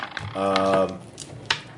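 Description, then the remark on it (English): Fate dice clatter on a hard surface in a short burst of sharp clicks, with a sharper tap near the end and a brief hum of voice mixed in early. “Here's another set of fate dice.”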